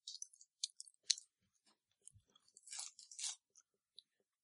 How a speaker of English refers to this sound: Do we want to have our roll in just us munching on Tootsie Rolls?